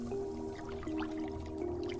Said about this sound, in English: Now add the dry ingredients to the water and stir clockwise.